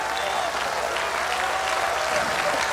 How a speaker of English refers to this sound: I will clap my hands. I will clap my hands in this place. We've done it many times, but we'll do it. We'll continue to do it. We will clap our hands.